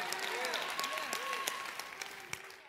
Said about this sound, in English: If you know you're part of that group, let God hear your hand clap tonight. Clap your hands, all ye people.